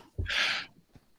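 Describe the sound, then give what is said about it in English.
A man's second sneeze in a row, fairly loud: a short throaty catch followed by a bright, hissing burst of breath that fades quickly, then near silence with a faint breathy sound. “Bless always you. Comes in twos.”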